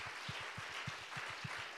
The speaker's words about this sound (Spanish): Podríamos darle un aplauso al Señor Jesucristo. Can we give our Lord Jesus Christ a round of applause?